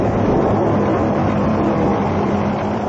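A car speeds past, its engine a loud, steady rushing roar that fills the whole moment without fading, with no voices over it.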